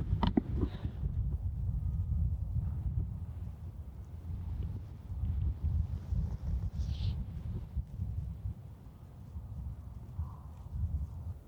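Steady outdoor wind rumbles and buffets throughout at a farm on a cold day of 46 degrees, with a couple of faint, brief crow calls in the background and no one speaking.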